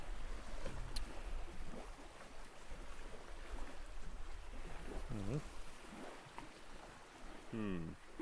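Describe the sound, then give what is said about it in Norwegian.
Waves lap steadily against a shore outdoors by a traditional Norwegian cabin in an idyllic forest clearing, a continuous soft wash with small splashes, joined by two brief faint tonal calls near the end. “Og vi sitter her og hører på bølgeskulpet.”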